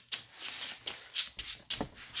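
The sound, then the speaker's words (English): A deck of cards being shuffled during a card game, a quick series of crisp riffling bursts repeating in an uneven rhythm, with no one talking. “Shuffle. Shuffle.”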